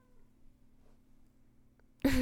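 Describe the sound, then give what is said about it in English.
A single short, faint cat meow from a cat sitting on a person's lap arrives right at the end and is cut off, after a stretch of near-silence with only a low steady hum. “The cat's sitting on my lap now, meowing. Just the faintest meow.”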